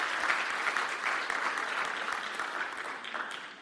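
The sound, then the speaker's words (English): An audience breaks into sustained applause, a dense steady wash of many hands clapping at an even loudness for several seconds, with no voices standing out above it. “If you receive that, give the Lord a good round of applause.”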